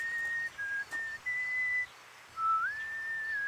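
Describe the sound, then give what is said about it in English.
A person in a park whistles a simple melody of sustained, steady notes with brief pauses between phrases, clear, with no talking. “I walked across to the park and started to whistle.”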